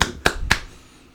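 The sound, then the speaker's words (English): Three sharp hand claps in quick, even succession, crisp, each with a short ringing tail, then quiet. No one speaks. “Clap it up.”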